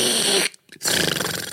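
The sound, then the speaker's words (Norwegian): A voice imitates the deep, heavy snoring of someone sound asleep in an airplane seat: two loud, raspy, growling breaths separated by a brief silent pause. “Og når jeg sitter i flyset, da er det skikkelig soving.”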